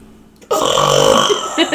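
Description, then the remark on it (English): A loud, drawn-out burp erupts suddenly after a brief quiet moment, rumbling steadily for over a second with no talking. “A scream and a burp. That's how they get welcomed this time.”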